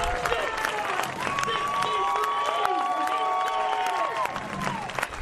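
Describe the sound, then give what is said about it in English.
A large crowd in Rupert County cheers and applauds loudly and continuously for a little boy, with high-pitched whoops and shouts rising over steady clapping throughout. “Between the tears, laughter, cheers, and applause for a little boy who knew no wrong.”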